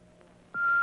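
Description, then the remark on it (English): A faint hiss gives way to a sudden loud, steady electronic beep, a single sustained high tone from an answering machine that holds to the end. “Boy, that's an awful slow beep.”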